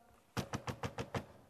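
Six sharp, evenly spaced knocks on a door in quick succession, fairly loud, with no voices or other sounds around them.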